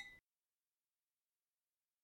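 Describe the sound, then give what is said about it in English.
Glasses of South African red wine clink once in a toast, a brief bright ring with a high glassy tone that is cut off after a fraction of a second, followed by silence. “Who knows? Cheers.”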